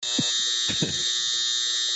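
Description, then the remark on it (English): A clothes dryer buzzes loudly and steadily, a harsh electric drone that holds unbroken for the whole moment, with a few soft low thumps beneath it. “Oh, it's my dryer.”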